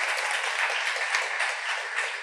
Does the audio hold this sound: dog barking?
no